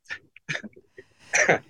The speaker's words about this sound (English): As I'm still coughing today.